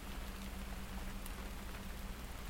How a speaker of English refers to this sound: You're listening to the sound of rain falling in a small cabin by a stream, with a bit of distant thunder in the background.